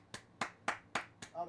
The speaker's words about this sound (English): BMF has picked. I'm gonna clap it up for BMF. Hold on.